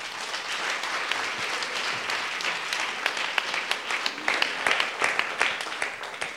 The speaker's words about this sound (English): Could somebody just... clapping's good.